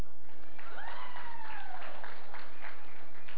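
An audience claps in a steady, moderate patter for a few seconds for an announced life group meeting this Wednesday, with a brief rising-and-falling whistle or whoop cutting through the applause.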